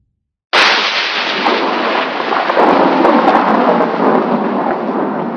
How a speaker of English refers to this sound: It would have to thunderstorm, wouldn't it? Kind of feels appropriate for a midnight rendezvous in the middle of nowhere.